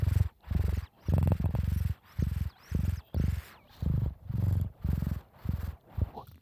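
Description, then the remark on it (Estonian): A person imitates a cat's purr with their voice, a rumbling, rhythmic series of low vibrating bursts, about nine in a row with short breathy pauses between them. “By the way, ma oskan nurruda, kuulete või?”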